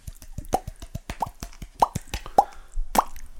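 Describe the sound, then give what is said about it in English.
Hot tub water bubbling, a steady, irregular run of wet pops and plops with a few brighter gurgles, fairly loud and continuous, with no voices over it. “Listen to the bubbles.”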